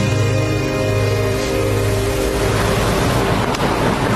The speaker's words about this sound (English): So just the sound of an ocean. Doesn't get any better.